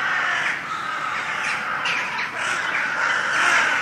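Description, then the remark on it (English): Many crows caw over one another in a loud, continuous, overlapping chorus, harsh calls rising and falling without pause for several seconds. “the crows greedily called out to one another, filling the sky with the teeming blackness of their bodies.”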